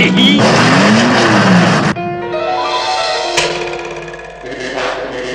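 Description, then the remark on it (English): A Lotus Formula 3 race car roars loudly, starting with a rough, noisy blast, then settling into a high, sustained revving engine whine that shifts pitch as it accelerates. “What they don't realize is that although Le Chiffre thinks he has a faster car than me, I am faster in my Lotus Formula 3.”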